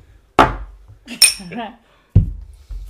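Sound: drinking glasses clinking together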